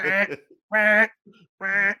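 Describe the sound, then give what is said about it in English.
Someone imitates a duck with three nasal, buzzy quacks, each about a third of a second long, separated by short pauses and fairly loud, with no other talking. “Want me to make animal noises?”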